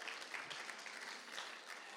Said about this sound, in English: We are 3 weeks old today, and we are excited about what God's doing. Come on, give it up for that. You can clap. It's good.